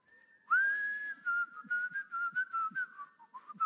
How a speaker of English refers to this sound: It began with a little whistle. Do you remember it? Got it in your mind right now? Let me hear it.